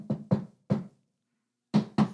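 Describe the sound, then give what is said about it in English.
A patterned secret knock on a speakeasy door: two quick raps, a short pause, a third, then a longer gap before two final raps. The knocks are solid, with no voices. “Generally, before a thirsty patron could cross the illegal threshold, though, they had to know that password or maybe the secret handshake or the secret knock.”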